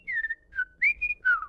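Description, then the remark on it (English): Finch-like chirping whistles: five bright, short tonal notes with gentle pitch glides, in a quick uneven rhythm. They are fairly loud and alone, and end with a brief sharp burst. “I mean, wow, you've spoken Finch your whole life.”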